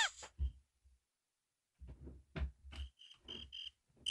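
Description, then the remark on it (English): A toy cricket noisemaker, the Dave Cricket kept in a drawer, chirps in a quick run of short, shrill, high-pitched pulses, mixed with low thumping bursts, fairly loud, with no one talking. “The Dave Cricket going off again.”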